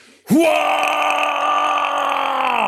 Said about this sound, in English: And from within it, you just hear a guttural sound, a wave of rage that pours out.